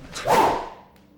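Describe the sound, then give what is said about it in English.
A single sharp whoosh of spears being thrust forward toward a man's face in a cave, fairly loud, rising quickly and trailing off into quiet within about a second. No voices. “There's no need to stick spears in my face.”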